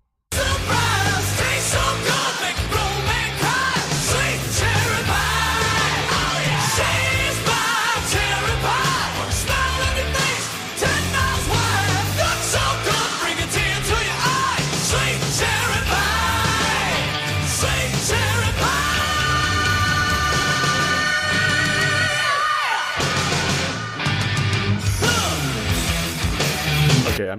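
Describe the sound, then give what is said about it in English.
Loud, dense rock music with harsh screamed vocals running almost continuously over heavy guitars and drums, briefly dropping out near the end before crashing back in. “Oh, there it is. Yeah. Jesus. Yeah, screaming at you.”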